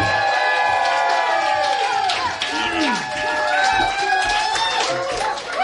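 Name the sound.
audience applause and cheering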